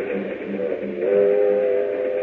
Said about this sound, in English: Meanwhile, on a train to Miami.